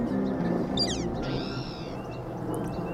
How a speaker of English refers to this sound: A spotted towhee giving its mew call.